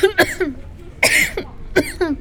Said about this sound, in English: You all right? You've been coughing all morning.